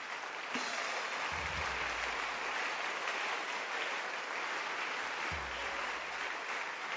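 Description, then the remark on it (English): A crowd claps steadily, a dense, continuous wash of many hands with no clear individual beats, holding at an even level for several seconds with a few low thumps underneath. “Oh, encourage them with a hand clap.”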